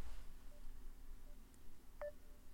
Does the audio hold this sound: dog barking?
no